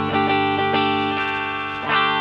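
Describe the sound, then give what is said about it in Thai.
A warm, deep-toned electric guitar, its pickup set for a thick, deep tone, plays sustained chords with some distortion and effects, a few strums ringing out steadily and fairly loud, with slight buzz from the studio's poor electrical power and no voices. “อันนี้ปรับปิกอัพมาแบบเสียงทุ้มอ่ะ มีทั้งหนาทั้งบาง หนาๆหน่อยฮะ”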